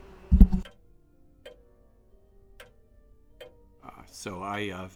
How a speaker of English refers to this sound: So I felt we needed our familiar clock to introduce the show, as is our tradition.